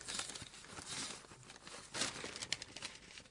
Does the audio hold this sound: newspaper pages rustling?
yes